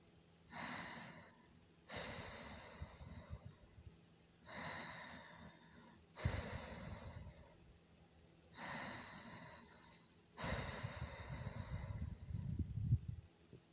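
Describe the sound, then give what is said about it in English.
Slow, deliberate Ujjayi breaths through a constricted back of the throat, about six in a steady rhythm, each a raspy, ocean-like hiss alternating between inhale and exhale, with no talking. “Activate your Ujjayi breathing. Constrict the back of the throat so that every inhale and exhale sounds like the ocean.”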